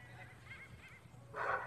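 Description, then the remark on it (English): Dogs barking in the distance: a few faint, muffled barks, then a louder, sharper bark near the end, heard over a steady low background hum. “So there's dogs barking and people yelling.”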